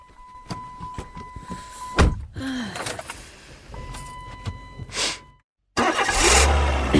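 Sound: car engine starting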